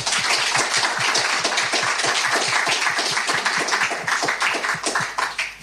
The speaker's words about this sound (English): Thank you all so much for joining us tonight, and would you like to welcome them all with a round of applause?